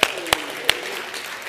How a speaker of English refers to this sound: You guys okay? All of a sudden, you got like real quiet on me or something. Just clap your hands or something. Let me know you're there. Come on.